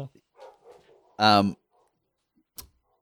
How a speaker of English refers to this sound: I'm just going to close the window because there's dogs barking.